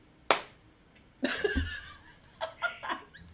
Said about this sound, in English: Are we ready? Yeah, should we do a 1, 2, 3 clap? Yes. All right. 1, 2, 3.